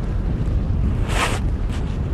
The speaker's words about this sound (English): Right now there's a nice gust that I can feel. It's saying, okay, time to get going and rig up the kite.